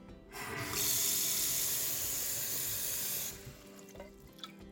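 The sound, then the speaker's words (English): Water gushes steadily from a tap into a pot for about three seconds, a bright rushing hiss, as the pot is filled to cook pasta, then cuts off, leaving faint drips and small clinks. “First, we're gonna fill up the pot with water.”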